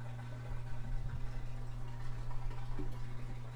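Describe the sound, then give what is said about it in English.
A washing machine runs with a steady low mechanical hum and a soft, continuous wash of churning, watery noise, holding an even level throughout with no one talking. “Can you hear the washing machine?”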